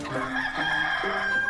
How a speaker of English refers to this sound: Now you did it, Loudmeak. The roosters are coming.